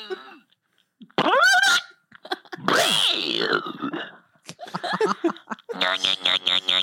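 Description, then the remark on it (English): A voice makes blown, sputtering fart imitations, mixed with laughing and giggling, ending in a buzzy, pulsing raspberry. “Wait, what sound do you make when you fart?”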